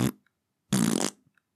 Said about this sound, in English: Oh, they're just fart noises, right? And my dad's like, "This, I can't, because this is ridiculous. Because it's loud. It's like full blast.